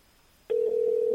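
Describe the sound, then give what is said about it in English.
After a brief quiet moment, a steady electronic ringback tone of an outgoing phone call to Spain, where it is 1:30 in the morning, begins and holds unbroken to the end, clear, with no talking. “Let's see how he answers the phone. See if he answers in a nice way.”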